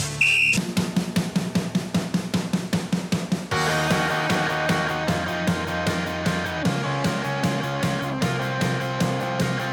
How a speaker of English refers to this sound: you will go on my first whistle. Sam, you will go on my second whistle